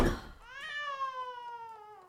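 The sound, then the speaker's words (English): A cat named Angel, woken mid-nap, lets out one long, drawn-out meow that slowly falls in pitch, moderately loud, following a brief rustling noise at the start, with no one talking. “Now look what you've gone and done. You've woken Angel mid-nap.”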